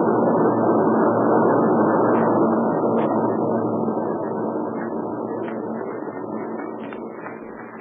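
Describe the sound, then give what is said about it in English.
A steady, rumbling drone of military aircraft engines passing overhead, loud at first and slowly fading as the planes move away. No voices. “Meanwhile, let's stay right here where we are until those warbirds get out of sight.”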